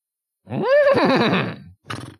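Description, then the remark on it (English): A person does a vocal impression of a horse whinny, a rising then wavering neigh lasting about a second, followed by a short breathy snort-like burst, fairly loud. “Oh, okay, that's a pretty good horse.”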